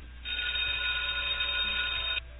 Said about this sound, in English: Yeah, ring the bell